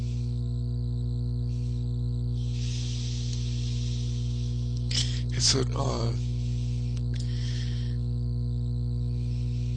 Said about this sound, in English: There's a hum somewhere. Is that me? Yeah, I hear it too. Huh? It's quite loud. A swarm of bees. See if it's me. It went away. It just. Yeah. I think it's come and gone a couple times.